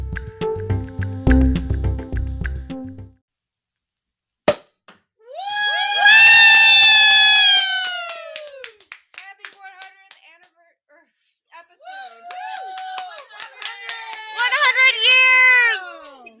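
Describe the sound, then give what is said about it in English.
A burst of crowd cheering and clapping erupts for a few seconds, then gives way to long, rising-and-falling cat-like yowls, apparently a voice imitating a cat. “That was such a good pop.”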